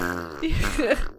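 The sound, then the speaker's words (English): A short, low, buzzing vocal sound: a person imitates with their mouth the farting of the Muckmen, dirt zombie creatures. It lasts about a second and is fairly loud. “But a lot of other people online call them farting dirt zombies. Oh, yeah, because they kept farting.”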